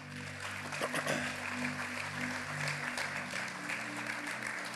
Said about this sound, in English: Yeah, let's give God a big round of applause.